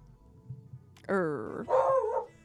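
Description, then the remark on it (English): A dog, Ivy, lets out two loud, drawn-out barks in quick succession at the back door, the second rising into a whiny yelp, over a quiet background. “Thank you, Miss Ivy, who's barking out the back door.”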